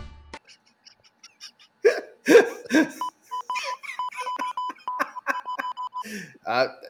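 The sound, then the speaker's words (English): A robot character on a show beeps in an erratic, incoherent Morse-code pattern: steady high tones pulse in uneven short and long bursts, mixed with garbled vocal squawks and grunts, after a few sharp gasping sounds. “Also, he sometimes communicates in Morse code, even though his Morse code is incoherent gibberish.”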